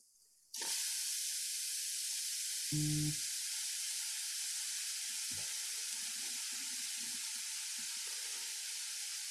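Loud, steady sizzling as food hits a hot pan, the crackling hiss bursting in suddenly and holding to the end, with a few faint clunks and scrapes underneath. No one speaks.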